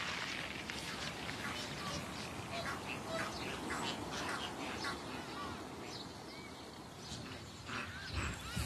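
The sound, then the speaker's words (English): Ducks quack repeatedly at a Black River bird watching site wetland, their calls overlapping in short bursts against a steady wash of background noise that stays fairly loud throughout. “Then you have the heartlop gull, the African black duck, the Egyptian goose.”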